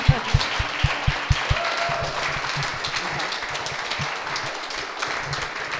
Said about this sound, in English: Or even just another round of applause.